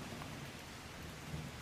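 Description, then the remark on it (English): Heavy rain pours down in a steady, dense hiss, with a low thunder-like rumble underneath and no voices. “Small drops dancing on the ark's wood soon became a downpour.”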